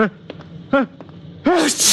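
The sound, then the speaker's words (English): A short voiced intake builds into one loud sneeze from a person with a cold, ending in a sharp, hissing burst, preceded by a few brief breathy vocal sounds. “My eyes just water, my nose runs, and I sneeze because I'm essentially a masochist.”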